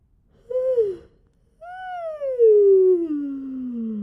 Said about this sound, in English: So let's just start with a simple yawn.